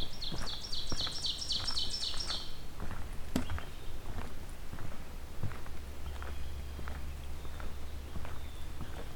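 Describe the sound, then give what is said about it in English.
An ovenbird sings a quick run of repeated two-note phrases that builds over about two seconds, then stops, by a little pond in a swamp. Crunching footsteps and a low rumble continue through the rest. “We're coming up on an oven bird.”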